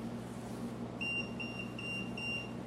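A K2 EMF meter, pegged between orange and red with no electricity anywhere near it, gives off a series of about four short, high electronic beeps in a steady rhythm, fairly quiet over a constant low hum, with no one speaking.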